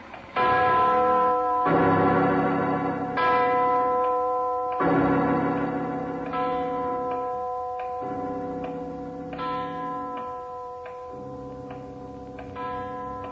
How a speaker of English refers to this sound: It's the clock winding up. That giant bell's gonna...